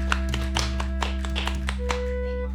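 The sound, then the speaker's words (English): A few people clap for a couple of seconds for guests who came from LA: irregular, crisp hand claps over a steady low electrical hum, with no talking. “Clap it up for them.”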